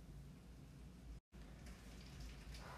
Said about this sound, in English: So it is raining, and I'm like, wow, that rain is really loud. Yeah, because it's hailing. So there's all these tiny, the green grass now has like some white all over it. And yeah, they're little balls. I see them bouncing off the grass,